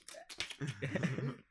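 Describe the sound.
A voice imitates someone typing on a MacBook keyboard in a coffee shop, with a quick run of sharp mouth clicks and taps that blends into a brief voiced, humming sound toward the end.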